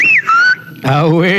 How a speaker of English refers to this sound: Yeah, that was his signature thing when he did his show. Missed that whistle.